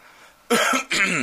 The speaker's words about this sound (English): Why did I have to clear my throat?